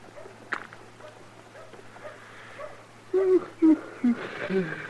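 A dog whimpers in a string of short, thin whines, three or four in quick succession toward the end, over a faint, steady background hum.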